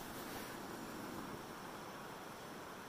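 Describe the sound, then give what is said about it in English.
Steady, hissing rush of water at a rolling boil for making coffee, a dense bubbling roar that holds evenly for a few seconds with no voices over it. “oh, boiling water.”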